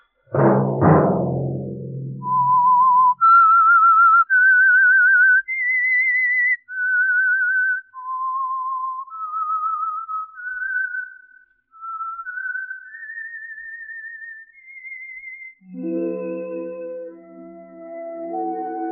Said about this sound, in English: Let that whistle be your signal for the Signal Oil program, The Whistler, each Monday at 8.